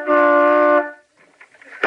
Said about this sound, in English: Oh, there's Bing in the upstairs window. Hey, who's that honking in C sharp?